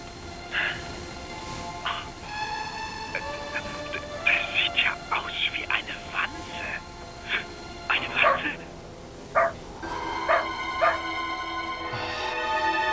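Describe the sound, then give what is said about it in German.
A dog barks repeatedly in short, uneven bursts, some quick yips and a few longer calls, loud over a steady rustling background. “Sag mal, was hatte der Hund an seinem Halsband?”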